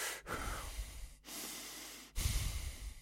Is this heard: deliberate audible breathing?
yes